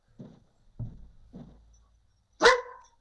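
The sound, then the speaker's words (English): Dogs barking at someone knocking on the door, a short burst of four sharp woofs, the first three lower and evenly spaced, the last one louder, higher and more piercing, with no voices. “If you stop knocking on my damn door, they would stop fucking barking, homeboy.”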